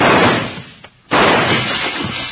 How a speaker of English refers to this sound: who's doing that shooting? That came from this end of the street.